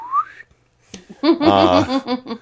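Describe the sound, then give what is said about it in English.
A quick slide whistle glides upward in pitch for under half a second, a sound effect for Robin Hood shooting an arrow in a Let's Pretend radio adaptation of Robin Hood. After a pause, a louder, buzzy, wavering voice-like tone follows. “Hopefully there's some slide whistle action.”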